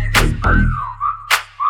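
A single whistle glides down in pitch and then holds steady, riding over a loud hip-hop beat with deep bass and sharp snare hits.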